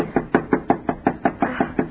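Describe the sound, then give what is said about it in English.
A rapid, steady run of about eleven firm knocks on the door of a house, evenly spaced, with no voices. “Knock harder. I can't. It hurts my knuckle.”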